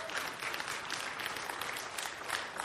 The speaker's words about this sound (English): You just applauded the Bible and the author of the Bible, God.